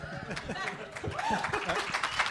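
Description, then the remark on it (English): An audience at a panel for the Immersive Horror Box presentation laughs and claps together at a joke, a dense wash of scattered hand claps mixed with chuckles and murmuring voices, steady and moderately loud throughout. “If you listen to the podcast, you definitely don't need to clap for that.”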